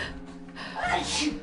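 A single fairly loud sneeze with a quick breathy intake before it and a sharp noisy burst at the end.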